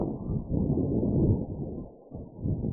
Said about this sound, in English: Wind is really blowing today.